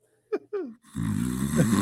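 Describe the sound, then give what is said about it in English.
A voice imitates snoring: two short grunting breaths, then a long, buzzing, rattling snore that carries steadily to the end. “You're not breathing in. You're sawing logs.”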